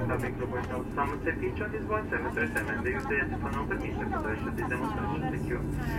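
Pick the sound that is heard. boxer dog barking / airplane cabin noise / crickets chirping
airplane cabin noise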